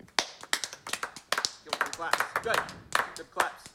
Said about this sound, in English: Good claps.